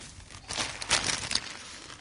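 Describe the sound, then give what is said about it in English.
A plastic bag of ice cubes crinkles and rustles as it is pulled open, in a burst of irregular, bright crackling that swells in the middle and then tapers off, with no voices. “So would you mind grabbing some ice from the bag and putting one cube on the chopping board and one on the saucepan?”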